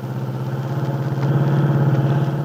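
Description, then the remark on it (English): A car engine hums steadily as the car is driven on a Sunday afternoon toward the Lane Farm on Willow Road, a low continuous rumble that swells slightly in the second half, fairly loud with no voices. “Dell Shipley, with Aunt Mary on the seat beside her, is driving her car toward the Lane Farm on Willow Road.”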